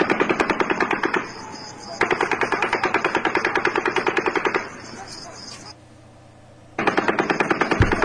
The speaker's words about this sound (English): Zoomed in. Yeah, showing how that when the gunshots stop, the strobe light stops. But then you hear gunshots without the strobe light, too.